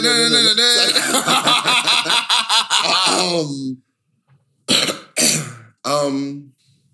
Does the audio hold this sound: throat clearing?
yes